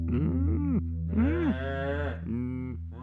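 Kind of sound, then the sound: animal, cows mooing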